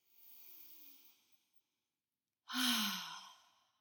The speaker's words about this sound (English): I want you right now to put two hands over your heart and just breathe into that space. Deep breath in through your nose and out through your mouth.